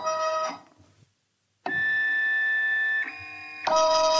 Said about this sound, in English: This sort of looks a little bit like an inkjet printer, but it's over this small cup of water, and it's dropping these little drops of red into it, which seem to be sinking and forming a shape very much like a raspberry is starting to appear.